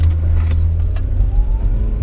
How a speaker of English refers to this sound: That was a fail. Oh, no, it worked. Okay. It's just, it doesn't squeak because the car's got, like, traction control on it. It doesn't let it burn out for more than, like, a second.